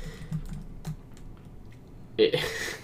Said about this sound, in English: typing this up?